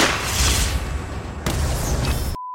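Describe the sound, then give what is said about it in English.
Loud tree-cannon fire in an Arbor Day radio promo for 91.5 WRFT: a heavy booming blast rumbles, then a second blast hits around the midpoint, and the rumble cuts off abruptly into silence. “Is that a tree cannon? Run!”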